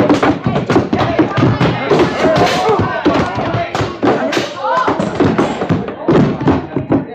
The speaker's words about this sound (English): Great Scott, but you knocked him out. Yeah. Ain't it a shame.